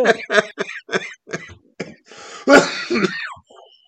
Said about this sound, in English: Sorry, dear listeners. That cannot be a pleasure for you guys to listen to me cough, but I apologize. I'm trying to get over a cold.